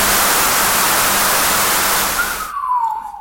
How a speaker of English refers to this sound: A whistle kind of sound, like descending kind of tone when they're converted to audio. He'd listen on his headphones because he could pick atmospherics from cosmic radiation. So atmospherics are caused by lightning all around the world.